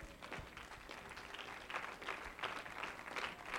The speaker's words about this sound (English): Now, can you clap to the Lord right now?